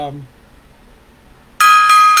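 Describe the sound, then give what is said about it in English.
After a brief trailing voice and a short pause, a loud, bright metallic gong rings out, struck three times in quick succession as a salute for a singer, the shimmering tones piling up and ringing on. “Three bell salute for her, three gong salute for her.”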